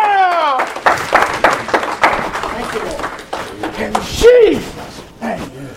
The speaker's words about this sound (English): Give God a hand clap of praise up in here, up in here.